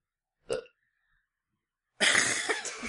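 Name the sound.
burp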